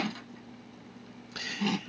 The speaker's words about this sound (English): I don't think that was in the script. I think that she broke that wine glass... champagne glass, and they kept the camera rolling, and I think that she just ran with it and just drank out of it anyway.